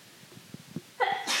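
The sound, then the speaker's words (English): A single sharp sneeze bursts out after a few soft breathy sounds, a quick high-pitched intake followed by a forceful, airy release, fairly loud. “Bless you.”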